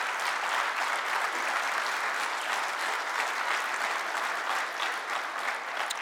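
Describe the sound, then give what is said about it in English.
An audience breaks into sustained applause to thank those who serve behind the scenes, a dense, steady wash of many hands clapping at once for about six seconds with no pauses and no voices standing out. “Let me hear your thanks.”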